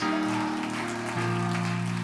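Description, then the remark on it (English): A church audience claps their hands in praise on a Sunday morning in a dense, continuous patter, mixed with steady sustained musical chords that shift once partway through. No one speaks. “Come on, while you're clapping your hands.”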